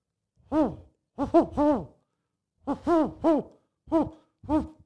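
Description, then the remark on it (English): A person imitates a snowy owl with a series of about eight drawn-out, rising-and-falling vocal hoots, delivered in uneven clusters with short pauses, fairly loud, no other sounds. “Here's my impression of the snowy owl.”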